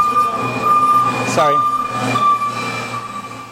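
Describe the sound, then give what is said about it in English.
A car drives past, its steady humming tone sliding sharply lower in pitch at the moment it passes, then carrying on at the deeper note as it moves away. “If you watch as the car goes past...”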